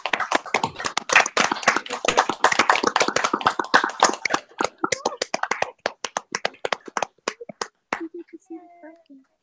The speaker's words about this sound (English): if everyone would unmute their microphone, and we're just going to clap for you